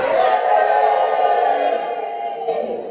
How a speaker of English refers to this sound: Look at the way you are even cheering them on. That is how you should cheer.